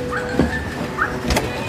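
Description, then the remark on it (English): A dog named Gigi barks a few times next door, short sharp yaps spaced out over a low background hum, keeping the cartoon character Yakko up at night, with no one talking. “Anywho, that night they are trying to sleep and, they're actually sleeping right next door to this barking dog.”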